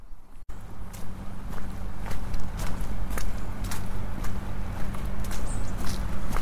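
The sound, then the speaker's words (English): A car engine idles with a steady low hum while ice is scraped off a windscreen in a series of sharp, irregular rasping strokes. No one speaks. “That's the familiar sound of someone with their engine running, scraping ice off their car.”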